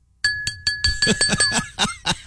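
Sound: glass being clinked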